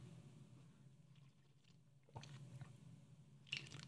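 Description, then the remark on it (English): Someone takes a sip of tea, with a couple of short wet slurping bursts over a low, steady background hum and no talking. “This is, take a deep breath with me and have a sip of tea.”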